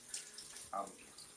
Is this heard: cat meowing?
no